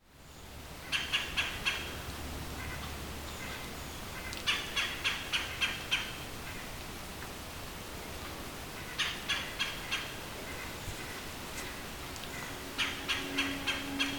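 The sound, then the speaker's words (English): A red-bellied woodpecker, a medium-sized woodpecker of eastern mature forests, calls in four separate bursts of quick, rolling churring notes, each a few seconds apart, clear over a quiet outdoor background. “The red-bellied woodpecker doesn't have much of a song.”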